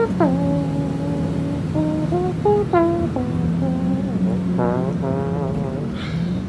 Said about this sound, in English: Well, that is a very elegant looking trumpet, I must say. Oh boy, my favorite trumpet ever played.